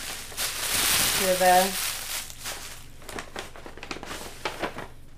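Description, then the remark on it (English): Crinkling and rustling of a Christmas-themed paper gift bag being handled and opened, with a brief voiced sound partway through and bursts of crackly rustle continuing afterward. “This is, just for all our listeners, this is a Christmas-looking theme bag. It's a Christmas bag.”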